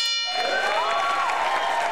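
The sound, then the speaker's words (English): A bell is struck once as a reward after a brief silence and its bright, shimmering tone rings out steadily, fairly loud, lingering to the end. “Take the goddamn bell.”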